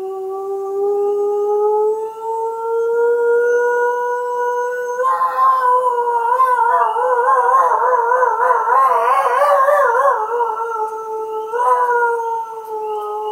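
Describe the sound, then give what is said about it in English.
A single long, tentative howl from a lone wolf rises alone, then the pack joins in, wavering and overlapping into a loud chorus with young wolves shouting and roaring, before easing back toward one voice. “you're going to hear a very tentative howl from a lone wolf. And then after that, the pack of wolves will start opening up.”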